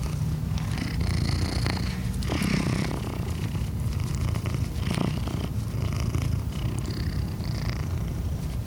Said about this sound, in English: Oh yes, a purring cat is hard to resist. Trust me.